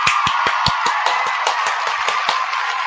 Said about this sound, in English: Let me go ahead and get the round of applause ready for Premier Cocktails.